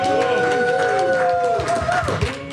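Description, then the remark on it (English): A crowd cheers and shouts loudly for a couple of seconds, a dense, steady roar of many voices with a few higher whoops and yells rising above it, as an audience responds to a host asking the married couples present to make some noise. “How many married couples do we have here? Make some noise.”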